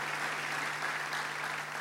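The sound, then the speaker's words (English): A church audience claps steadily together for long-serving church office staff, a dense, even patter of many hands sustained throughout, filling the space at moderate volume with no voices standing out. “You can still clap for them if you want.”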